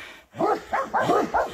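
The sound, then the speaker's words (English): Dogs barking in a quick run of four sharp barks, one right after another, with no talking over them, in a yard where three young grizzly bears are present. “Well, get the dogs in the house. I try, but they won't listen to me.”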